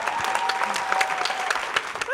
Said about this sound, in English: You're going to have to keep clapping for quite a while. Yeah, you've got to keep it going. Keep it going. Can't come up to a quiet stage.